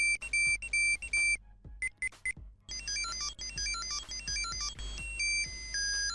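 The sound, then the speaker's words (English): An old-school Tamagotchi virtual pet with no built-in light beeps, apparently because the pet is hungry: shrill, tinny electronic beeps in short repeated bursts, then a longer run of quick chirpy notes stepping up and down like a tiny tune. No one speaks. “That's when he was hungry, I think.”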